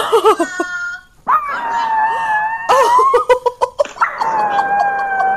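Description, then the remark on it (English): A dog howls in several long, wavering, high-pitched notes, broken by short whimpering yips, as it hears the family's girls on a FaceTime video call; the sound is loud, with no one speaking. “And the dog, every time the girls get on the FaceTime, the dog howls like that.”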